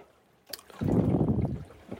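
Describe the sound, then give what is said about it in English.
A northwest wave slaps hard side-on against a small rowing boat in wind of about 16 knots, a sharp knock followed by a loud, rushing wash of water that fades over a second or so. “Northwest waves, so coming over my left-hand shoulder for most of the day. Sometimes side on to the boat, just like that.”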